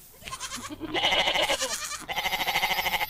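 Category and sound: animal, goat bleating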